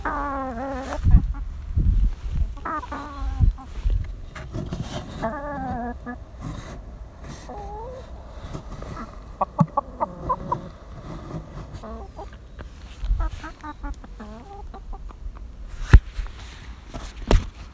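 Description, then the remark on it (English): Chickens cluck and murmur in a continuous, uneven stream of short calls, with occasional sharper squawks and a faint buzzing of insects in the background; no one speaks. “Have a chicken.”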